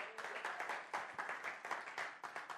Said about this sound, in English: Clap your hands all over this house if you believe it.